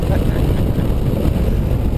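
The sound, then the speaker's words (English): A racing car's engine roars flat out as Heikki drives it across the line on a track, a loud, steady low rumble with a rough, gritty texture that holds constant for the whole two seconds without rising or falling. “Brakes work rather well on this car, don't they?”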